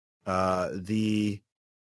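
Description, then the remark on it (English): A voice imitates a monk falling over and gasping for breath: two strained, voiced heaves in quick succession, the first sliding down in pitch, loud with no other sounds. “One of the monks falls over, gasping for breath.”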